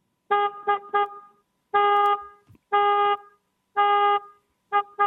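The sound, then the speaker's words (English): A car horn honks in a rhythmic pattern as a signalling demonstration: three quick short toots, then longer blasts and a final pair of short beeps, loud with no talking. “Okay, I'm going to do it with the car horn.”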